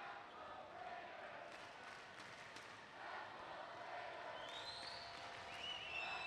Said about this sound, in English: And Beaver crowd really letting Marshall have it as she converts both of her shots at the line.